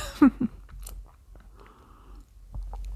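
Quiet mouth sounds of someone sipping coffee: a couple of soft gulping thumps, then a faint, drawn-out slurp, with no talking.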